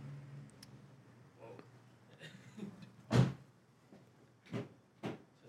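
A front door opens and shuts as a man leaves through it: one loud, hard thud midway, followed by two softer knocks and clicks close together, over a low, steady background hum.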